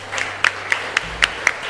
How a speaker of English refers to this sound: Praise His holy name. I welcome you to God's family. Yeah, let's clap.